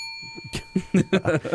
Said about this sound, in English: And I'm going to ring the bell every time